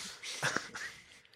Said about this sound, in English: I made myself cough because I was laughing so much.